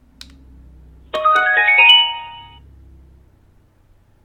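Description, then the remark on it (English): A short electronic Bluetooth pairing chime from a radio pairing to a phone rings out alone, a quick run of bright tones that steps upward and then rings briefly before fading into quiet. “I think he just paired to my phone again.”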